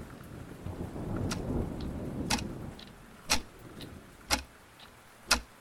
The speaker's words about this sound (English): So we have no contact with the mainland. Not until the storm passes, sir.